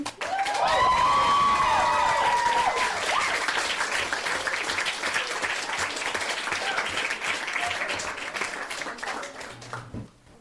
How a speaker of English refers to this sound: But who doesn't just love like the sound of a round of applause?